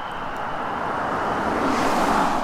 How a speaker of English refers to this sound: Uh-oh, there's a car coming. They never stop.